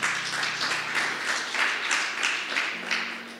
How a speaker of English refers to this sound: Can we please just give a round of applause to the fathers? Please, please, please, please, please. Please.